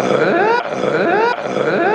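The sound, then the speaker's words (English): A radio show caller imitates the noise a car makes nonstop with grunting: three loud, strained, throaty bursts in a steady rhythm, each with a rising pitch, heard on its own with no other talk. “producer Mike said someone called in and did a grunt”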